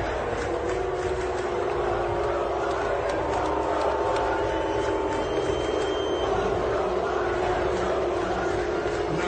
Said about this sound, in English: Thankfully, we decided to let that play because what the crowd is chanting in the background has a major obscenity in it.